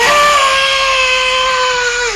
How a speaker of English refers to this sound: The girl's eyes are glowing green. They burst into flames. Green flames? That's the one. She continues to scream.